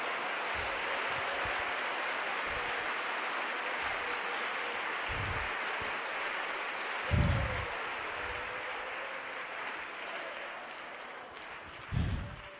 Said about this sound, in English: Clap your hands, clap your hands. Hallelujah.